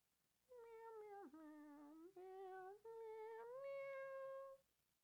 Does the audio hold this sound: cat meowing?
yes